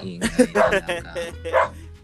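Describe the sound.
Many dogs bark and yip in a quick series of sharp bursts over about two seconds, with a voice audible underneath.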